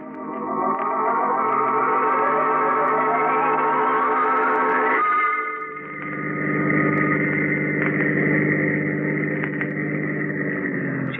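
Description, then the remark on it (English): A car engine revs up steadily, its pitch climbing for several seconds before dropping as it shifts, then settles into a loud, steady drone as the car drives on, with no voices. “I'll feel better in the car. Out on the road.”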